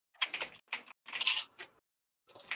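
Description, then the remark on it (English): Crisp crunching of a snack being chewed, several bursts in quick irregular succession, then a pause before one more crunchy bite; no talking. “That was a well-timed crunch, by the way.”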